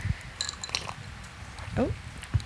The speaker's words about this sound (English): I swallowed a fucking ice cube. Yeah, you dribbled a little.